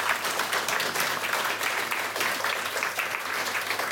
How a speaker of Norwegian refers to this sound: Gi dem en applaus til å begynne med.